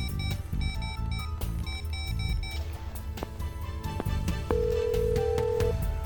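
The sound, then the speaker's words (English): A telephone rings on the line during an outgoing call to a hotel, a steady electronic tone heard over busy background music that fills the whole stretch without any voices. “Do you want to risk a phone call that could be traced?”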